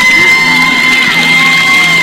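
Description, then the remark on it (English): A large stadium crowd cheers and applauds loudly and continuously for a 103-year-old Ohio woman who threw out the first pitch: a dense wash of clapping with whoops and shouts rising out of it, with no one speaking over it. “How about a big round of applause?”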